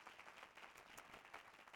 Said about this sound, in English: Somebody clap your hands and give the Lord some praise.